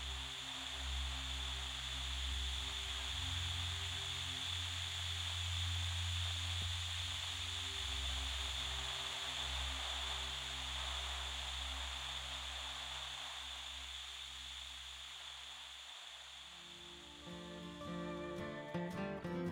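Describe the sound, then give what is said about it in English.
Steady static hisses loudly from a television that has just been turned on, a broad wash of white noise with a low hum beneath it, shifting slightly near the end. No voices are present. “I turned on the TV, and a chill ran up my spine. Static. Just static.”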